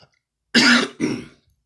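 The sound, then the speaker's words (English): Two harsh bursts of throat clearing and coughing in quick succession, the first louder and broader, the second slightly softer and shorter, with silence before and after, as a person coughs after something from trail mix got stuck in their throat. “It's dangerous to cough these days.”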